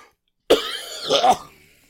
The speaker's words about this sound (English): Oh god, you're already like gagging.